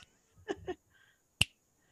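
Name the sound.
finger snapping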